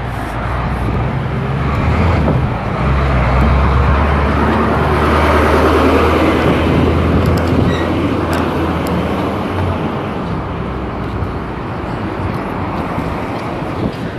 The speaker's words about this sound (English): Some guys making a U-turn, like a really big truck. He's trying to make a U-turn on a really tight space. So that's what you're hearing.